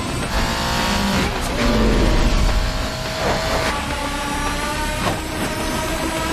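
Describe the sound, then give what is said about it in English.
A car in a movie races at top speed through city traffic, weaving in and out of traffic and going the opposite way. Its engine roars loudly and steadily with whooshing rushes and a brief tire squeal amid busy traffic noise, continuous with no one talking. “So this movie here, Henry Ford, they go speeding through the city, man.”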